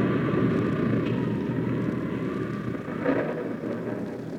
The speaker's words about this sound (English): The church bell had struck 12, and I started after her when the wind and rain struck with a fury I'd never known before. It raged so violently, I was forced to take refuge under a huge tree, wait for it to subside.